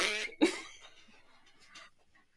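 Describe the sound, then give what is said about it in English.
A short, loud, raspy fart bursts out, buzzing for about half a second before trailing off into a faint, sputtering tail and quiet. “I ripped my ass. Do you hear that?”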